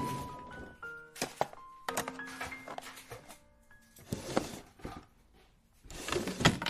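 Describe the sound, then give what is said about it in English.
A kitchen drawer without a proper handle is pulled open and pushed shut several times while things are put away, with wooden thunks and rattling clatter of contents, plus a few brief ringing tones between the knocks. “Why couldn't we have had a drawer with a proper handle?”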